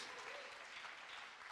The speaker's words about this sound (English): And it's worth applauding. It's very exciting.